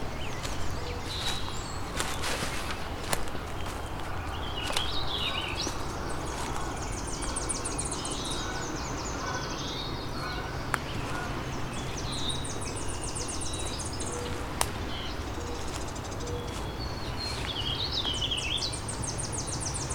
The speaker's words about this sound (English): Tennessee warbler kind of has three different paces to its warbles. Usually it switches more gracefully between them, but there's one